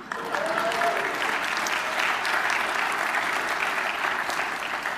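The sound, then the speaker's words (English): A church audience breaks into steady applause on Mother's Day, many hands clapping in a dense, even wash that holds at the same loudness for about five seconds, with no clear talking over it. “Y'all are going to no applause, nothing?”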